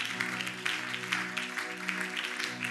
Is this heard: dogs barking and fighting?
no